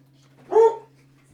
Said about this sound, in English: This dog, man. Every time a new person comes in, she snaps, she pops off.